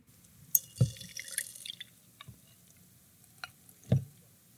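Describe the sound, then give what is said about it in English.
Oat milk poured into a glass, heard as a few sparse drips and soft glassy clinks and splashes spread over several seconds, with quiet pauses between and no talking. “So this is going to be a live review. Okay. Pour it into the glass, ASMR.”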